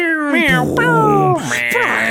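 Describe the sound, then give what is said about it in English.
A person mimics a cat with a drawn-out, wavering vocal meow, followed by another sliding meow-like cry, loud with no other sounds around it. “Meow, oh, no,”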